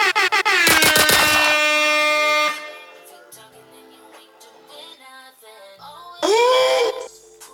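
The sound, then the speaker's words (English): Loud, blaring air horn blasts stacked in a rapid burst, followed by quieter music underneath and then another swelling horn blast near the end. “Should I give him air horns?”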